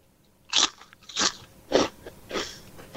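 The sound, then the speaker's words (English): Four loud, crisp crunches of potato chips being bitten and chewed, spaced about half a second apart, with no talking. “when you're ready, eat those chips.”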